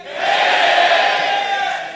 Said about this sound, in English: On the count of three, I want you to yell whether you think it's panic or patience. One, two, three.